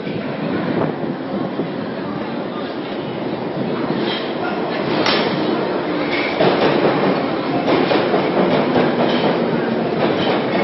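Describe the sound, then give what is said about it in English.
An underground train rumbles steadily along the rails with a rhythmic clickety-clack and occasional metallic squeals, heard from inside the carriage, loud and continuous with no talking. “Get on this train.”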